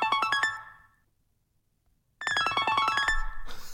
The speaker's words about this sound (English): Oh, it's an echo. come on, let's stop playing ringtones now, like we're 12 years old, and I've just got a new Nokia 3310.